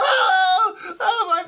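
A person lets out a loud, high-pitched scream in two drawn-out bursts, the first longer, with a brief break between them, sounding like an acted shriek of terror.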